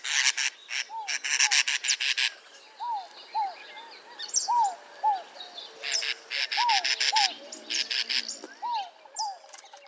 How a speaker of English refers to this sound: Look at that. It's a cactus wren.